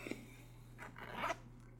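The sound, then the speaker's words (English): A short, quiet raspy zip of the zipper on a light sportswear jacket, one quick pull lasting about half a second over a low steady background hum, with no voices. “I'm wearing one of my new sportswear jackets. It's very light. It's very sexy. It's a zipper.”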